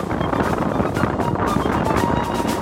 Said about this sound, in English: The wind was overpowering. The Arctic Ocean lapped against bare rocks.